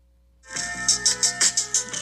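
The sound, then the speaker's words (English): A bright church bell rings out at the very beginning of a song in a quick series of evenly spaced strikes, each tone ringing on and blending into the next, clear with no voices. “Because you know when you first hear it, there's that bell.”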